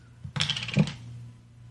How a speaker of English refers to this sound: I'm pouring myself a glass of whiskey.